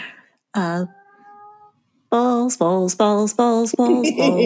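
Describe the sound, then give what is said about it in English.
A cat meows loudly, one call followed by a quick run of five insistent, wavering meows in a steady rhythm, with a faint tone in the pause between. “I think Kitty O'Hare is going to sing with us”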